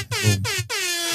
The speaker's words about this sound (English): Can we get an air horn for Dan real quick?